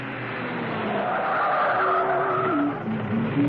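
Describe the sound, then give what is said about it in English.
A car pulls up and parks outside a home, its tyres squealing and engine droning steadily as it brakes to a stop, loud and continuous for a few seconds with no voices. “she parked the car outside Steed's home”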